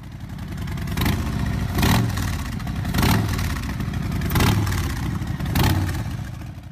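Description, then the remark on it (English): A Harley-Davidson motorcycle engine idles with a deep, loping rumble and is revved up five times in a steady rhythm, each throttle blip swelling loud before settling back. “Today, Harley-Davidson is one of, if not the most, recognizable motorbike sound.”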